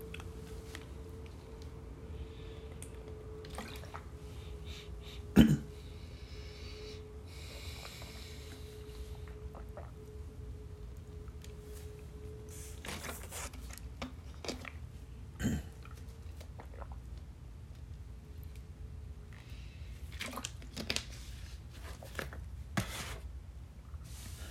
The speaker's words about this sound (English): Let me pause here and get a drink, please. Of water.